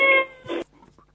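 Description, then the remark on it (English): A single drawn-out cat meow, loud, with a sustained wailing tone that breaks into a short rougher burst before cutting off into quiet. “Is that a child? Is that a cat down a well?”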